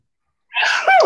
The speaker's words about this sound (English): Bless you.